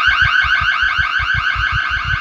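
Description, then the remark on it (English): A loud electronic alarm blares continuously, its harsh tone warbling rapidly up and down with a pulsing, rattling rhythm underneath, unrelenting with no voices. “The tone is long and raucous, a chimpanzee's shriek that drowns into a kind of rattle and back again.”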